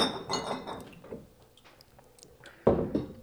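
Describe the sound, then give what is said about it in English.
Glasses clink together in a toast, a bright ringing tone that hangs briefly before fading, followed a couple of seconds later by a louder, duller knock of glass on a hard surface. “Let's cheers when you get here.”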